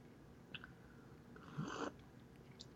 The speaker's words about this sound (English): It's a strong sip you took there.